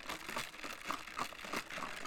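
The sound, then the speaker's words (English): Noisy slurping as someone sips Starbucks coffee from a cup, a run of wet, airy bursts repeating in quick succession with no talking. “Let me take a sip of my coffee.”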